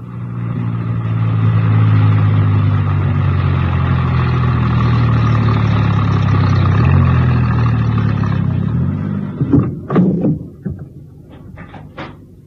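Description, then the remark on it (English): A van engine runs steadily with a low, droning hum for about nine seconds as the van is driven into a small printer's yard on the west side of a town, then cuts out, followed by a few sharp clunks and thuds like doors or handles. “My star operator was enjoying himself hugely and whistled happily as he drove the van into a small printer's yard situated on the west side of the town.”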